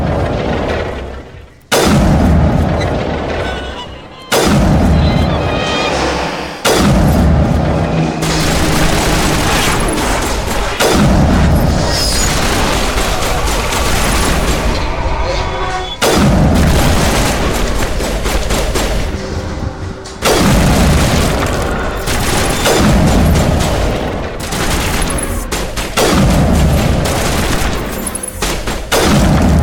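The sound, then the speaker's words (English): Loud video game sniper rifle shots crack out one at a time at irregular intervals, each a sharp booming blast hitting husk enemies and knocking them over, over a dense, continuous wash of game noise and rumble. “The sniper rifle does so much damage per shot versus these husk thingies that it knocks them over.”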